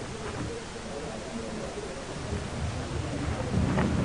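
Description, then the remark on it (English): A stormy roar of wind and driving rain at sea, where a ship struggles in the storm, steady and dense, with a deeper rumble of thunder swelling louder near the end. No voices are heard. “A ship struggling in a storm, and a lighthouse beacon that suddenly goes out just as the ship goes on the rocks.”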